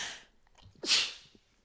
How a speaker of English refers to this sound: Whew, had to sneeze there. Pravda. In Russian, when you sneeze, as you're saying something, you say pravda and it means truth.